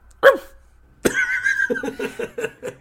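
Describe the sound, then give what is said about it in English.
A person voices a sharp dog-like bark, pauses, then lets out a longer, drawn-out howling bark that dissolves into quick, rhythmic chuckling pulses. “Dog days. I want to bark.”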